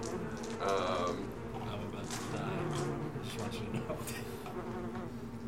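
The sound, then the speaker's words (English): A dense, droning swarm of wasps buzzes loudly and continuously throughout, the overlapping wingbeats forming a thick, steady hum with faint voices murmuring beneath it. “That takes us once again to the Hell Wasps.”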